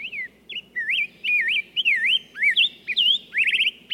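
A songbird sings a rapid series of clear, sweeping whistled phrases with rising and falling notes, prominent, ending in a quick trill over a soft, low background hum.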